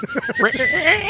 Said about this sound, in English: I can't whistle like that. I can't do that. I can't do this thing here. People who can put their pinkies in their mouth.